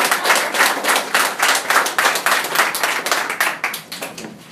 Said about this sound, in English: so I'm expecting a huge round of applause.